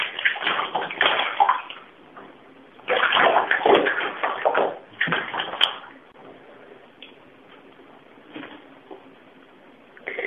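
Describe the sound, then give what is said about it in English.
Loud water sloshing and splashing in two long bursts, then quieter intermittent trickles and small splashes as a pet rat is bathed in warm water. No one speaks. “Like, keep the water warm enough, so it's really not that bad an experience for me.”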